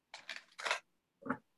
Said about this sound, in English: I'm going to shuffle a little bit, and then I'm going to just kind of pre-shuffling.